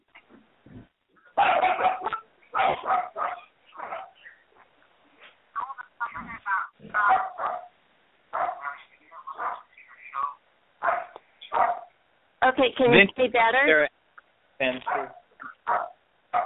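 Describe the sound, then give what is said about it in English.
A dog barks repeatedly in short, loud bursts over a narrow, phone-like line, with a person briefly speaking between the barks. “I can hear you and your dog.”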